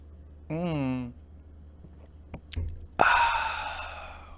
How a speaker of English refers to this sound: But I figured since it's my birthday, I can enjoy a drink. Right, so I got me a Dos Equis here. So yeah, I'm gonna take a sip of that.